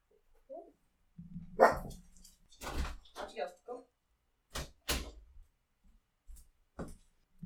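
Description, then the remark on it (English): A dog, Hank, barks several times in short, sharp bursts, with irregular pauses between barks and some low rumbling in between; a few brief knocks or thumps also occur. “Yeah, my dog, Hank is very upset about this.”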